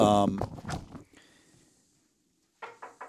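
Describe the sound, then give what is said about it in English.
Three quick knocks on a wooden table, hollow and fairly loud, come after a brief stretch of silence. Someone speaks at the start before the knocking begins. “There's a table over there. I'm going to take my headset off and go knock on it.”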